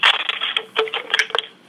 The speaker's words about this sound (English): I mean, and I dropped the phone. And we're back. I dropped the phone, but we're back. No, no. It probably... these landlines, I'm not used to having a cord attached to my phone as I'm talking.